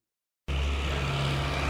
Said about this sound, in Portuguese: o chefe Olímpio conduz a sua carrinha em alta velocidade até às instalações do INAE